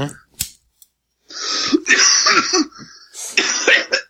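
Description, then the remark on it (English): A short coughing fit: a quick click, then two clusters of harsh, raspy coughs separated by a brief gasping breath, fairly loud. “I tried to do the whole thing without having a little cough fit, but...”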